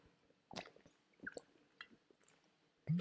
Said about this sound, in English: I don't know if you can hear that. Can you hear that? That is water. That is a water bottle and me having a drink of water.